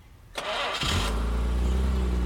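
A Plymouth Valiant's engine cranks with a brief whirring starter, then catches and settles into a steady, deep idle rumble, fairly loud, with no voices.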